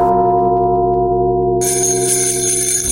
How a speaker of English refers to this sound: That's the magic of ….